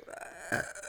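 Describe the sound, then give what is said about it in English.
A single short, throaty burp after drinking Dr. Pepper rises briefly in the middle, low and slightly rough, not loud, with only quiet background sound around it and no talking. “I just want to make sure we're still recording and burp a little bit.”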